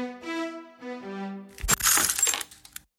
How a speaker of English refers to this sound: They unbuttoned the vest, and then the rosary crown tumbled out. They had twisted and mangled the crown for easier transport in the vest. When the crown hit the floor, it shattered.